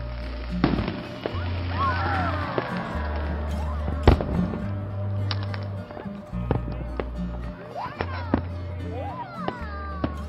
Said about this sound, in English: She wanted these fireworks to celebrate her rebirth as a non-smoker, but now they just seem like they're taunting her.